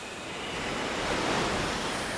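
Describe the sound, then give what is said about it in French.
A strong tramontane wind blows in a steady, loud roar that swells slightly midway, a dense rushing hiss filling the air with no voices. “mais quand c'est tramontane, il y a du vent et on l'entend.”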